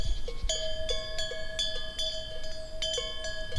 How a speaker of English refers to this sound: And then I looked down and saw cows. It's cowbells, not nuns doing Vespers. Cowbells.